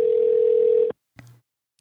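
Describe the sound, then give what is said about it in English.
A phone line rings once on an outgoing call, redialed from a phone to a voicemail number: a steady electronic ringback tone lasting nearly a second, then silence broken by a brief soft click. No one speaks. “And I think his thing rings like 5 or 6 times before it will pick up the phone and give you the voicemail message and stuff.”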